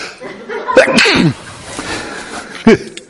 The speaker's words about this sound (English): You know, as now I've got to sneeze.